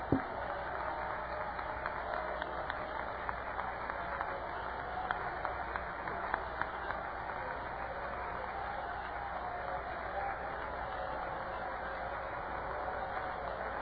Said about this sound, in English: Clap your hands to Him right now.